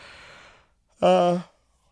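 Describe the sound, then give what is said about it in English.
A long breathy inhale followed by a short, loud, voiced groan-like exhale, a single yawn from one jet-lagged person with no talking. “Sorry, guys. The yawns. I'm a little jet lag.”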